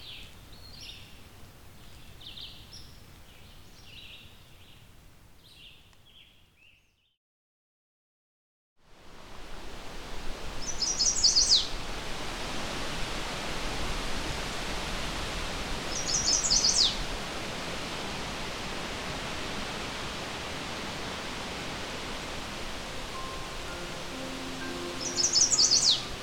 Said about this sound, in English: This is the song of a male chestnut-sided warbler. He's only been on territory for a few days. It's late May, and I'm looking for birds along the Huron Fringe, an area along the eastern shore of Lake Huron, one of the Great Lakes of North America.